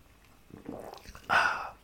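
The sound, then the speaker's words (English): Someone sips sparkling water with one drop of juniper berry in it: faint wet mouth noises, then a louder, breathy slurp lasting about half a second before it stops. No one speaks. “I'm actually drinking it as we record right now.”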